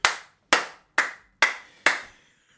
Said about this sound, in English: I love it. That was a standing ovation.